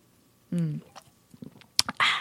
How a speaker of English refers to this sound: Let me take a sip. Hold on.